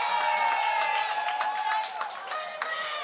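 An audience breaks into steady applause, dense overlapping claps filling the room at a constant loudness, with crowd voices and a few cheers mixed in throughout.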